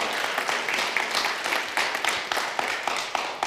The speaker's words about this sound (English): Come on, give him a clap offering of praise.